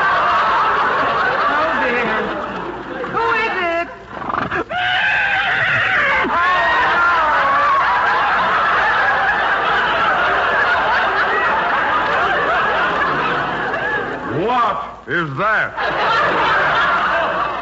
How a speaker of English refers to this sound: It sounded like a horse. That's just what it is, our milkman's horse. You see, the milkman is sick, so the horse is making the rounds alone.